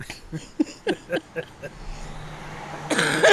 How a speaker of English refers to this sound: I've been laughing too much. That's why I've been coughing.